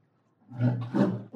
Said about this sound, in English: Oh. That's a polar bear growl. That's a growl? That sounds like the pit of hell.